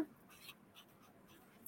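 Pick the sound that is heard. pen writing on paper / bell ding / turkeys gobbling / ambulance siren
pen writing on paper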